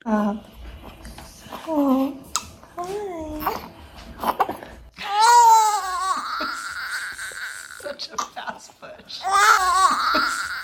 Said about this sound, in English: you're holding the baby and we're hearing like these newborn cries.